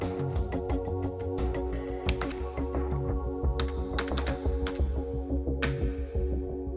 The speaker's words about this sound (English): She would spend hours losing herself in her computer, headphones plugged into her ears, playing the latest drone call tracks, tapping and clicking away on the keyboard as if she were born to do it.